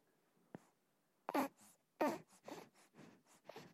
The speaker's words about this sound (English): That's just heavy breathing